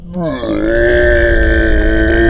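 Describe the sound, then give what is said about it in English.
A man's voice imitates a stone giant's angry roar, one that shakes the stones of Dead Stone Cleft: one loud, sustained, gravelly bellow with a rising onset, held steady for about two seconds with rich, buzzing harmonics. “The stone giant looks down at you, Mari, and then almost in confusion at this living pink creature in his hand, and bellows a roar of anger that shakes the very stones of Dead Stone Cleft.”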